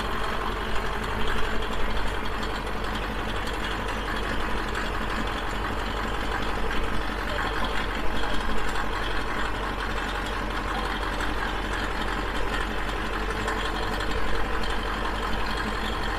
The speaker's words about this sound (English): What is this tractor rated at? What do you mean? As far as like plow goes. I don't know. They're supposed to be 475 horse.